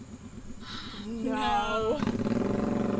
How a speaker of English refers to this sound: Who needs a motorcycle that loud?